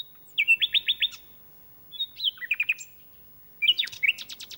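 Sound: nightingale song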